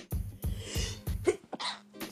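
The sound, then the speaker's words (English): A person sneezes in a rapid series of sharp, breathy sneezes, about five bursts in quick succession, fairly loud, with no talking. “So you just heard me sneeze.”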